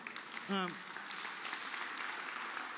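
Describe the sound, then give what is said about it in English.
An audience applauds steadily, a dense, even patter of many hands clapping throughout, with one brief voice calling out near the start. “Nobody want to applaud that.”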